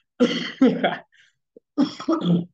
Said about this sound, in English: Oh my God, apologies for coughing.